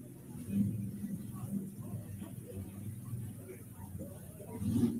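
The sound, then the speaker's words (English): A deep, throaty Ford pulling truck engine from Windsor, Missouri rumbles steadily as the truck comes out at a truck pull, swelling louder at the start and again at the end, with a low droning growl throughout. “Ryan Hamilton coming out next. The Hanging Tough Machine out of Windsor, Missouri.”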